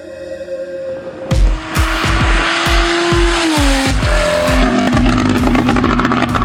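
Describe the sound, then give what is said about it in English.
The engine of Steve Kraft's Porsche 911 Turbo with a custom exhaust revs hard and loud, its pitch climbing then dropping through gear changes, with a sharp burst of exhaust noise and a rapid pulsing rhythm throughout. “Those car sounds are courtesy of Steve Kraft and his Porsche 911 Turbo with a custom exhaust, which sounds like a freaking F1 car.”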